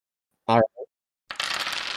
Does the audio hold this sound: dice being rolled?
yes